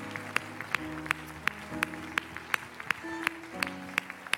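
Steady, rhythmic hand clapping, roughly three sharp claps per second, keeping time over sustained musical tones and chords that shift underneath; a church audience gives the Lord a hand clap of praise and thanksgiving during worship.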